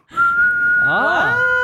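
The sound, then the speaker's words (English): A person whistles, holding one loud, steady note for over a second, with a brief wavering pitch bend partway through and some faint vocal sounds underneath. “… cannot whistle, and … can like a demon. I reckon whistle really well.”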